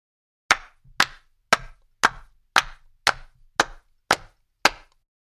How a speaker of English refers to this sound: Good old-fashioned hand claps, nothing like it to bring some humanity and some life to a pre-recorded loop. So hand claps throughout the tracks, and once again giving the impression that we're at a village dance or some kind of festivity